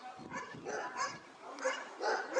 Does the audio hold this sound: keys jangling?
no